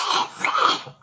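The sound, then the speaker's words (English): A voice imitates a dinosaur with a short, raspy snarl and growl, breathy and throaty, lasting about a second before trailing off. “Just like the snarling, growling, put you to bed right away.”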